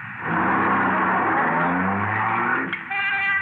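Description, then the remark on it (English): A suspect's car revs hard and accelerates away down the street, its loud droning pitch climbing steadily, with a high whining overtone and a brief sharp burst near the end. No one speaks. “He's getting into a car.”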